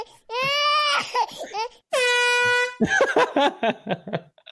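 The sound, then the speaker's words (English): A foghorn sound effect plays two long, steady blasts, each held for nearly a second, with people talking and laughing between them and afterward. “The foghorn kills me.”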